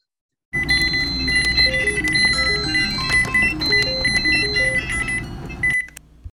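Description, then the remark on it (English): A dense, chaotic cluster of recorded electronic beeps and chimes from everything in a house that beeps, layered to sound at once, overlapping tones piling up loudly for several seconds before cutting off abruptly. “That was me being so proud of myself that I recorded everything that in my house that beeped. And I was like, I'm going to just like get them all to make a beep at once.”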